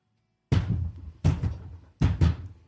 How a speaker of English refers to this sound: And then with a smack and a shudder, the door opens and closes as Murina enters the box.